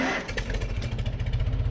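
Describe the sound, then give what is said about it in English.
A classic, retired Farmall farm tractor in Iowa, bought in 1979 and modified with three pumps, runs with a loud, steady low chugging engine with rapid rhythmic pulses and no voices. “This week we're going to check out a classic farm all that's retired, but it still gets the job done.”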